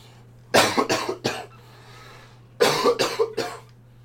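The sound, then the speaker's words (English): A loud coughing fit comes in two bursts of about three harsh coughs each, separated by a short pause. No one speaks, and a low steady hum runs underneath. “I was waiting for you to get your coughing fit up.”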